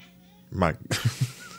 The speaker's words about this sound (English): My cat is in the background talking right now.